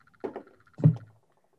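Knuckles rap on a wooden desk: two quick, fairly soft knocks, a short pause, then one heavier, resonant thump that rings briefly. There is no talking.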